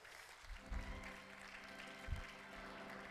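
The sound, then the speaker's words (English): An audience claps for a few seconds, a steady wash of many hands with a couple of heavier low thumps mixed in, no voices over it. “If you know what I'm saying, clap your hands right there.”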